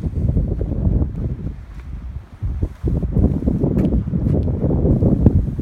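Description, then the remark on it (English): Strong wind buffets the microphone at a riverside boat ramp by the Willamette River in loud, continuous low rumbling gusts, with a brief dip in the roar midway before it surges back just as heavily. “Well, it was so windy there that it made the audio virtually unlistenable.”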